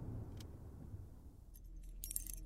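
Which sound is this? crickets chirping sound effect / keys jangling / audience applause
keys jangling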